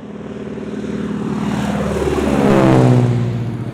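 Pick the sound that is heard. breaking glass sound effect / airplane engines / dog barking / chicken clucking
airplane engines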